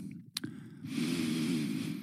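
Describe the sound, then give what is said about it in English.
A quick sharp sniff is followed by a long, drawn-out breathy inhale through the nose, like someone savoring a food aroma. It's steady and fairly loud, with no talking. “Sniffing, savoring.”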